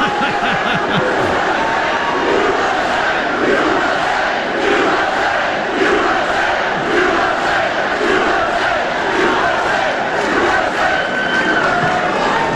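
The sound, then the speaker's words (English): A large crowd gathered for a Donald Trump speech boos loudly and continuously, a dense roar of many voices holding steady for the whole stretch with no single speaker standing out. “Headline tomorrow will be Trump booed for tax cuts.”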